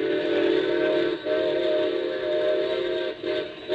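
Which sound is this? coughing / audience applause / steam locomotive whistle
steam locomotive whistle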